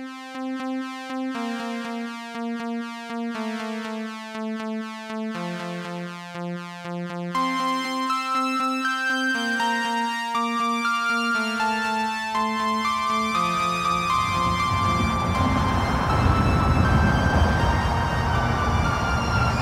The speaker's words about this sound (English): Cue the theme music, please.